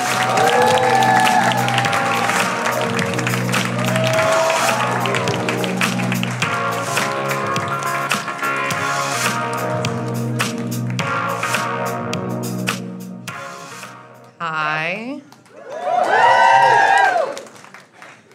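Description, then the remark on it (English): A comedy show audience claps and cheers in a loud, steady burst for about thirteen seconds, welcoming the next performer. The applause then cuts off, and a voice speaks briefly. “So why don't you guys put your hands together? Yeah. Start clapping right now.”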